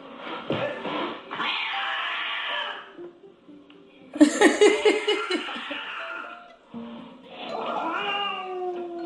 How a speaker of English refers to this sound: That cat outside, that's what I would have did. That cat could have stayed outside.